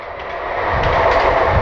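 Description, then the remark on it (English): A PATCO commuter train rumbles past, a broad steady roar that swells louder over a couple of seconds, with no voices over it. “Oh, there goes the mighty, mighty Patco.”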